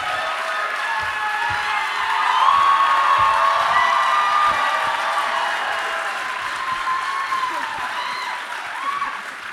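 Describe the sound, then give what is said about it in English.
A crowd applauds and cheers steadily for several seconds, a dense wash of clapping with shouts and whoops rising over it, swelling slightly early on before tapering, as special guests Liza Treyger and Fred Armisen come out. “I wonder who they were clapping for, Fred.”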